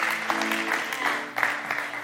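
An audience claps steadily for a couple of seconds, a dense wash of many hands at moderate loudness, with a faint low sustained tone underneath and no one speaking.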